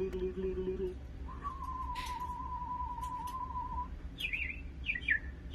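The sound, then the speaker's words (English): A man, a bird caller, whistles birdlike calls by oodling: a low hooting tone, then a long steady whistled note, followed by a few quick, high warbling chirps. No talking. “Yeah, this is about bird callers. Oodles. The bird whistlers get their sound by oodling.”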